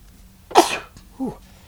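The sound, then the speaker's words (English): A single sharp sneeze bursts out, loud and breathy, followed by a brief lower vocal sound, like a quiet sniff or grunt afterward. “Bless you.”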